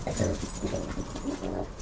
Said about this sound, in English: There goes the dogs.